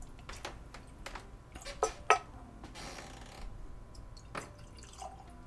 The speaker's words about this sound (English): All right. Got the water. Let's pour this thing.